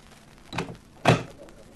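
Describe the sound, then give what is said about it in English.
A door opens with a soft creak and swing, then shuts with a solid thunk a half second later, fairly loud, as someone passes through it into a room with gambling tables. “Okay, you're in. Through that door.”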